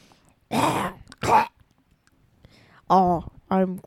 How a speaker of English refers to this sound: And that's Hermione coughing off hairballs. Nooshki, can you check? Nooshki, can you check if Bash is the one coughing up hairballs or is it mine? It's just Hermione.